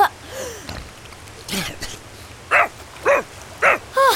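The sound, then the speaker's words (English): A dog called Doggo, in the water, makes a few soft whimpers and yelps, then lets out four loud, sharp, evenly spaced barks in quick succession. “Doggo! You made it! We made it! Here, let me help you out of the water.”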